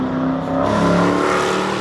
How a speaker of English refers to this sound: Ladies and gentlemen, start your engines.